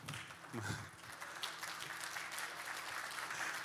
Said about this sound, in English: It was like a clap for a putt, two-meter putt, and that's great.